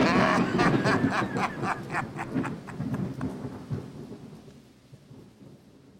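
A thunderstorm rolls through: deep, rumbling thunder with crackling bursts over steady rain, loud at first and then slowly fading away. No one speaks.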